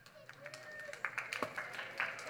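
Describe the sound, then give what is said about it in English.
Kids clap scattered and uneven, with high excited voices cheering and squealing over the applause, which is moderately loud and stays fairly steady throughout. “If you're a kid, clap and cheer and go crazy right now.”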